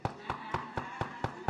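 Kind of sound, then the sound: impact, knocking on a door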